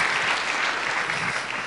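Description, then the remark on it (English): A crowd gives Jesus a big hand clap, steady and dense, staying loud and even throughout, a continuous wash of many hands with no individual claps standing out. “Anyway, let's give Jesus another big hand clap.”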